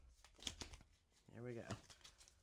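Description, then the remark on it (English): A quick, papery burst of cards being shuffled, crisp flutters in the first second, followed by a brief wordless vocal sound. “I'm gonna give these a little bit of a shuffle here.”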